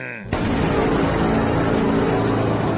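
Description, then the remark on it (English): A loud car sound effect bursts in abruptly and holds steady, a dense roaring engine rumble that fills the whole stretch, with no voices over it. “Send in the car.”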